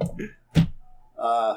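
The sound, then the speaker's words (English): Dice are rolled on a table during a tabletop role-playing game, for a roll with bardic inspiration, landing with a single sharp, hollow thunk, heard between bursts of people's voices and a drawn-out vocal tone at the end. “These dice are terrible.”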